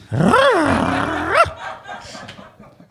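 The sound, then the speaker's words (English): A German Bullweiler Weiner Doodle dog lets out one loud, drawn-out snarling growl that swells and ends in a sharp bark-like rise, followed by a fading rumble of low background noise. “what kind of dog is this? German Bullweiler Weiner Doodle.”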